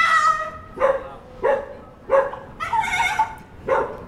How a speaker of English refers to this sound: That unbelievably is a dog. That was terrifying. Oh, you wouldn't get that if you took your cat to the pub, would you? That was the strangest sound I'd ever heard.